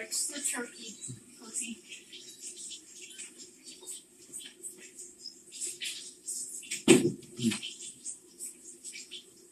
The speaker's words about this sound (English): Can you close the door? Yeah, I'm gonna close the door.